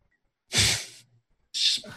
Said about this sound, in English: Birds. That was scary. Your bird made like a demon noise. It wasn't my bird.